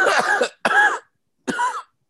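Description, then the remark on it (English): Three harsh coughs from a man, with short gaps between them, the first two in quick succession and the third after a brief pause, each bursting loudly then trailing off. No talking. “Look at him coughing.”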